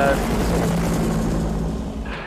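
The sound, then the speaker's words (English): An Apache attack helicopter's engine and rotors drone steadily and loudly, a thick low rumble with a humming tone that holds throughout, with indistinct voices mixed in. “It's a what? Apache attack helicopter.”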